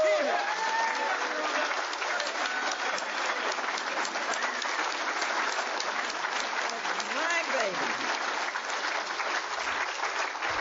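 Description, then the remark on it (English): Sustained audience applause for a woman asked to stand up fills the whole stretch, a dense, steady wash of many hands clapping at an even loudness, with a few faint cheers and voices mixed into the crowd noise. “I want you to give her the greatest round of applause.”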